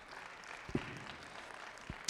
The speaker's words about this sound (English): Come on, give God a round of applause.